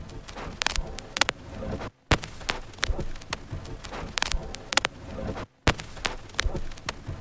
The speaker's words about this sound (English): The other trick I used to create this really subdued, muted sound was to overlay vinyl static throughout the whole track. Here's the vinyl static just on its own.